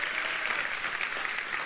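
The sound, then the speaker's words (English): An audience applauds in church, a dense, steady wash of many hands clapping at an even, moderate volume throughout, with no distinct voices rising above it. “How many of y'all want to just overcome golf clapping in church?”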